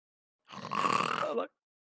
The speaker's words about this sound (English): No, a snore happened.